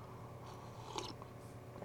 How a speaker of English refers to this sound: Let me get a sip of coffee real quick.